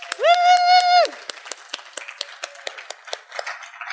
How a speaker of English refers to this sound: Can we have one more big round of applause for all these writers?